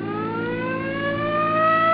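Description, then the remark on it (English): A police car siren wails steadily on a main highway full of trucks and trailers, its tone rising slowly and growing a little louder, prominent with no voices over it. “Come on, hit your siren.”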